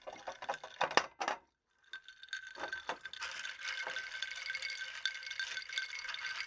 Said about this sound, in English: We don't have a shaker, so we're going to have to just stir the hell out of these. Shake it out.